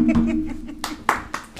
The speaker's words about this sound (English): Good job. Let me clap for you.